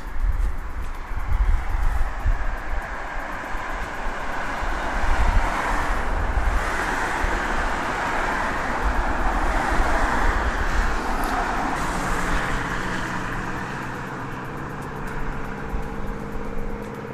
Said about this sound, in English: Okie dokie, I want to ask you what the stereo sounds like with all these cars going zoom, zoom, zoom. Is it good?